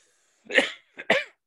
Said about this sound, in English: Excuse me for the cough, listeners. I should get a cough button, but I'd have to push it then. So that wouldn't work.